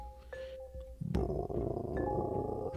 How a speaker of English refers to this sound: Mr. Bliss's stomach rumbled.